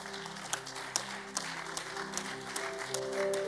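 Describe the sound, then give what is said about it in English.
An audience claps steadily during a sermon, a dense wash of many hands with a few sharper, louder claps standing out roughly every half second. “The way you are clapping.”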